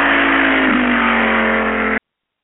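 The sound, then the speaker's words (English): A car engine roars loudly and steadily for about two seconds, a sustained revving drone, then cuts off abruptly into silence. No voices are heard. “Our car is fast.”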